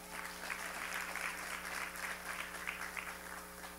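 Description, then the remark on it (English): An audience claps steadily for a few seconds, a dense wash of overlapping hand claps with no single beat standing out, over a low steady hum. “Well, that's a good place to clap.”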